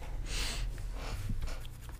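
A pen scratches across paper in a few quick strokes, with short bursts of rasping friction and brief pauses between them, and no voices.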